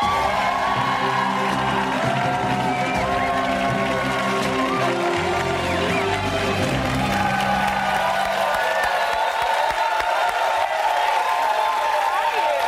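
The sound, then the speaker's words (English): A live audience cheers, whoops and applauds loudly and steadily as a guest is welcomed onto a show, with individual voices shouting out above the roar of the crowd throughout, one of them shouting "Chi-town". “Chi-town, is that what you shouted?”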